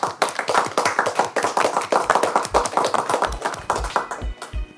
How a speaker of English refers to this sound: And can we give Henry a big round of applause? Thank you.